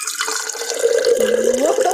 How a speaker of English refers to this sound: Okay, I'm currently holding a heavy pitcher and pouring some water. Wanna hear?